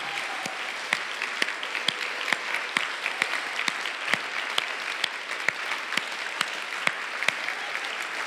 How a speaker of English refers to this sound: Every dad, I want you to stand up, and I want us to cheer for every dad in this place for the hard work that they do and the way that they love our church family.